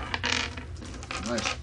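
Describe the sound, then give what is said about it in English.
Battery-powered dice clatter and tumble across a hard tabletop in two quick bursts of rattling clicks, fairly loud, with a faint hum underneath. “I have to check them and make sure they haven't rolled them so much they've killed the batteries.”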